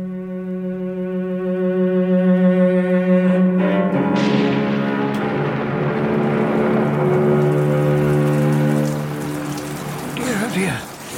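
Heavy rain pours in a dense, hissing wash that swells after the first few seconds, over a steady, low tonal drone, with no clear thunderclap standing out.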